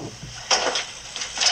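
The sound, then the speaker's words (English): A drunk man stumbles into a chair, causing a short burst of clattering bumps and scrapes, about four quick knocks of wood against the floor, moderately loud, with no talking. “Yeah, he's really drunk. Tripping over a chair.”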